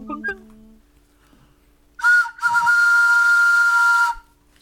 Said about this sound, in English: All aboard, please. That was a very enthusiastic whistle today.